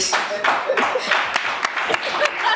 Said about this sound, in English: Not the applause.